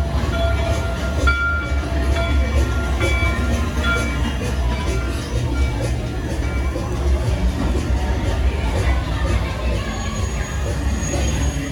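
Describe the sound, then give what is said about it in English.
A ride train rumbles steadily along with constant low mechanical noise, faint rattling and tonal whines, while a crowd murmurs faintly in the background. “We'll see you after we get off the train.”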